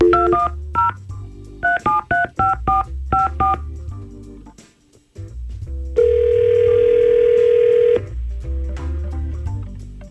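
A rapid run of about ten touch-tone beeps as a listener's phone number is dialed on the Y100 radio show, followed after a brief pause by a long, steady ringing tone, all over a low background hum.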